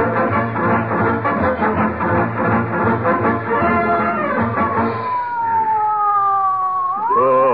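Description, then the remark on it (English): A loud ambulance siren wails, its pitch gliding down and then sweeping back up over a dense, rumbling background, with no voices. “Call an ambulance. This is serious.”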